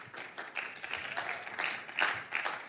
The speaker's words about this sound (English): Another round of applause for Just Goliath.